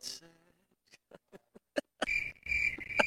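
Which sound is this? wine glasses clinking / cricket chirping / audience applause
cricket chirping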